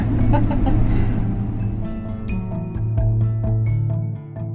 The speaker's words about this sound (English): Well, we can sit up at the front if you really wanted to. Best seats in the house. I love these double-decker buses. They're just like, they're so cool.